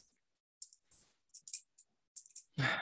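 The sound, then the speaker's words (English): A pen clicks repeatedly in quick, irregular bursts of small, sharp snaps, fairly quiet, ending with a short louder rustling noise. “Are you clicking a pen while you talk?”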